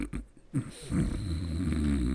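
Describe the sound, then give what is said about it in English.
A loud, rough breath drawn through a person's nose, sustained for over a second with a snore-like rattle, preceded by a short sniff. “Have you ever tried breathing through your nose?”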